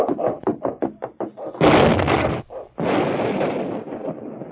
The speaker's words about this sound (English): Smokey Bates and Jimmy Lane were picking at the gold-laden rock when the sound of the explosion came to their ears. Oh, golly, Smokey. What was that? Hey, explosion and the big one, Jimmy.